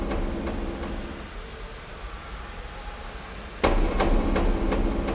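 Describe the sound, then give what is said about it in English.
A crowd stomping their feet in a steady rhythm as a team is about to come onto the field, sharp thuds repeating over a constant low rumble, suddenly growing louder and heavier partway through. “That's them stomping. They're getting ready for us to come onto the field.”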